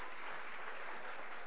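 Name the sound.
audience clapping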